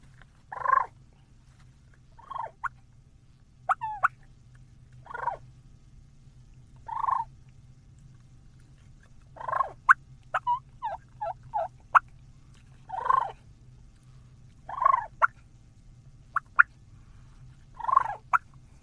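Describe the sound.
Soft, rolling turkey purrs imitated with a mouth call held in the mouth and made with the end of the tongue, repeated in short bursts every second or two, with a few sharp cluck-like notes mixed in over a low steady hum.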